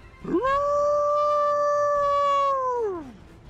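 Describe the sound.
A person imitates the deafening howl of a creature rising up on its back legs: one loud, sustained cry that swoops up sharply, holds a steady pitch for about two and a half seconds, then slides down and fades.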